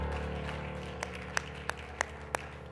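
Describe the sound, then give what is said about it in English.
A steady rhythm of handclaps from a seated church audience during a worship service, about five sharp beats evenly spaced, rises over a continuous low droning, tonal background. No one speaks. “You may clap your hands as you're seated tonight.”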